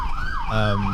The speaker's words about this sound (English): Pull over. So all you can hear is a siren. Pull over. You can hear the siren. And the kids are supposed to hear.